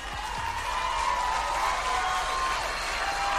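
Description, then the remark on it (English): A crowd claps and cheers steadily for a few seconds, a loud, dense wash of applause with shouts and whoops rising through it and no break in the noise. “The people cheering, do they understand the precedence that he set?”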